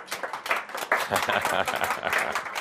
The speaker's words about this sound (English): Nay, I was not looking for applause, but I always appreciate it.